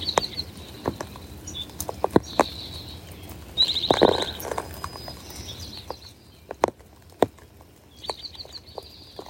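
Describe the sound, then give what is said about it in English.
In the early morning, birds sing in repeated high trilling phrases while raindrops tap and drip in sharp, irregular clicks, with a soft wet patter underneath and no one talking. “Singing in the rain.”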